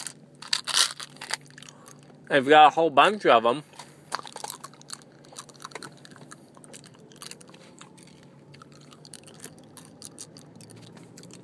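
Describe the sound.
A mouthful of mints, poured straight into the mouth, crunches and rattles in a loud, maraca-like burst lasting about a second, with people talking before and after it.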